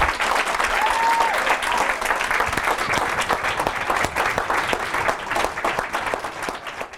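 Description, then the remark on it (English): A large audience claps steadily for several seconds for the announced winning team, Whiz Writers and the Curse of the Nomed, a dense, even roar of many hands with a brief whistle early on and no talking over it. “A huge round of applause, please, for Whiz Writers and the Curse of the Nomed.”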